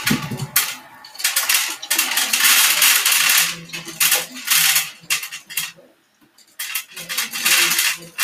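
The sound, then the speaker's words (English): Dry pet food kibble for Tempe, a pet, rattles and clatters in a series of bursts, like pieces being shaken and poured into a bowl, loud, with a brief pause near the end. “That was Tempe's food, just by the way.”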